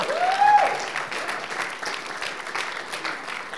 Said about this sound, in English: Everybody give Jesus a hand clap. Thank you, Jesus. Woo! Oh, come on. Give him a little more than that.